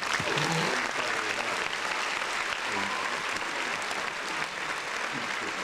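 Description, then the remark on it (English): Steady audience applause fills the whole stretch, a dense wash of many hands clapping at a fairly even level with no voices standing out. “Round of applause for you, man.”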